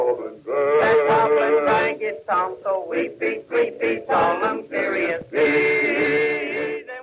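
A 1912 ragtime song recording: several male voices sing together in close harmony, punching out short, bouncy syllables in a steady rhythm before swelling into a loud sustained chord at the end.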